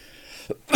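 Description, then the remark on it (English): A short, dry cough: a soft little catch first, then a louder, harsher burst at the very end, with no talking around it. “So even though whenever I have any kind of a cold or anything that gets into my lungs at all, the lungs clear out after 2 days, but that little trigger just stays there, and it just won't go away. Nothing to cough against.”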